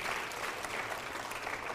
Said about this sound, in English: That's a gift from God. Come on, clap your hand. Don't take that for granted.